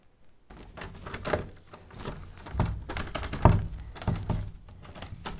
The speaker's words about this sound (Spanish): Quiero poner la ratonera en el closet, pero la puerta no funciona, no abre.